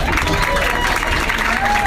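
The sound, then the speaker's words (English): A comedy club audience at the Funny Bone in Syracuse applauds comedians Esther Koo and Bert Kreischer steadily, a dense wash of many hands clapping at an even loudness throughout, with faint shouts and voices mixed into the crowd noise. “And one more round of applause for Esther Koo and Bert Kreischer.”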